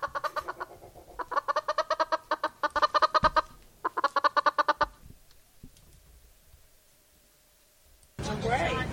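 A chicken clucks loudly in rapid, evenly spaced bursts of short clucks for several seconds, then falls quiet before a sudden burst of broad noise.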